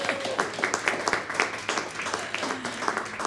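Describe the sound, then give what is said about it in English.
A few seconds of applause for a guest who passed a test, steady rapid clapping from a small group at moderate volume, with some faint voices mixed underneath. “Big round of applause.”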